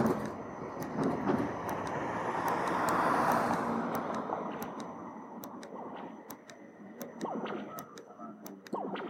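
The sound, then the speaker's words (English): An accessible pedestrian crossing signal, activated by pushing its button, beeps in a steady, evenly spaced rhythm over the rumble of passing traffic. Repeated button presses raise its volume, and its sharp ticks stand out more clearly toward the end. “So it gave this beeping sound. As I keep on pushing the button, it turns the volume up.”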